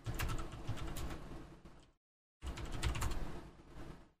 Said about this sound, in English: No. I can't hear you if you're talking. I was typing.